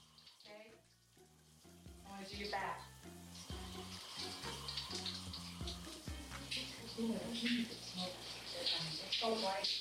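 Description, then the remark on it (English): Shower water runs in a steady hiss for the whole stretch, with voices and low tonal sounds mixed in underneath. “The best way to start our day is in the shower.”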